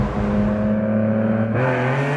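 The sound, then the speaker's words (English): A Lamborghini Diablo sports car engine roars loudly as Jay Leno drives it, its tone climbing steadily before a sudden gear shift drops the pitch and the revving builds again, with no one speaking. “Well, let's let one Lamborghini Diablo fan take us for a ride.”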